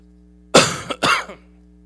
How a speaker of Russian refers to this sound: Ой, да, громко кашляет. Еще и в трубку